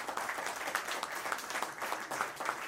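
A crowd applauds steadily, many hands clapping in a dense, continuous patter with slight surges throughout, moderately loud and without any voices.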